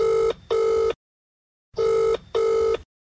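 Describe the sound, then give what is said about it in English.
A telephone rings twice before a call goes to voicemail, each ring a pair of short electronic trills, with a pause between them; clear, with no voices. “We got our hands on some recently leaked voicemails from Luke O'Neill's phone”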